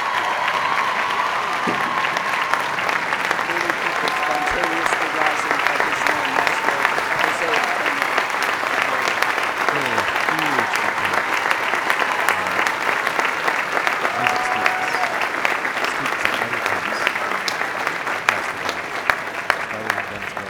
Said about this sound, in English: We applaud Maestro José Antonio Abreu.